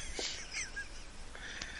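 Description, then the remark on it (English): A chicken squawks and clucks in a few short, raspy bursts over a brief stretch, fairly quiet, with no one talking. “So we're gone, and there's no Gambus, so chicken noise, whatever.”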